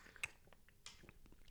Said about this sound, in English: I'm gonna take a sip of this cold brew coffee first.